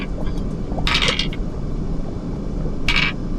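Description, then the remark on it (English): Dice are rolled for a research check in a tabletop game, totaling 13. They rattle and clatter in two bursts: a longer cluster of sharp, bright clicks followed after a pause by a shorter tumble, over a low steady background hum. “Go ahead and roll me another research for those.”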